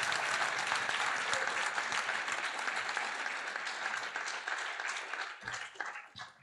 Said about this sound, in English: Now, before we actually give our response back to you in appreciation, ladies and gents, I think we can do a bit better than our polite clapping. Let's raise the roof and give Ngaakooroa a huge clap.